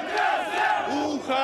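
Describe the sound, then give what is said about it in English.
Thousands of striking workers in Belarus, who downed tools and marched to a tractor factory against President Alexander Lukashenko, shout together in a dense, continuous roar, with overlapping voices rising and falling in pitch and a few chant-like swells standing out over the steady din. “Thousands downing tools and marching to a tractor factory.”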